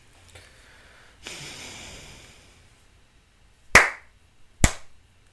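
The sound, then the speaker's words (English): Two sharp, loud hand slaps, spaced about a second apart, following a soft breathy rustle and quiet background. “That's it. Two slaps.”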